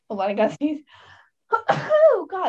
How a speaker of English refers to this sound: sorry. Bless you. Thank you.